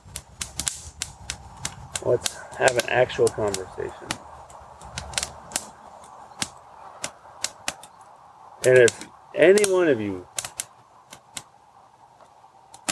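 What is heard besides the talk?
crackling campfire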